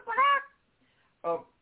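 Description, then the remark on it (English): Two squawky chicken-like clucks, a longer drawn-out call followed by a brief one after a short pause; they sound like a human voice imitating a chicken. “And to back this up, I have Mr. Chickadoo here today.”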